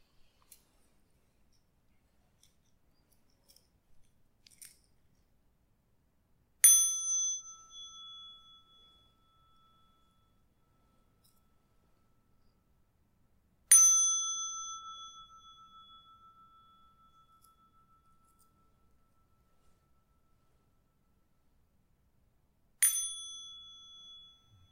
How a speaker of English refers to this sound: And now I will ring the bell 3 times, then we can slowly come out of meditation and open our eyes.